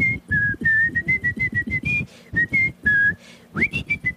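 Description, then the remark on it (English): Someone whistles a jaunty cartoon boat tune like Mickey's toot boat. It is a quick run of short, bouncy notes at a fairly steady high pitch, ending with an upward slide into a few final chirps. No talking. “With the little, with the Mickey's toot boat.”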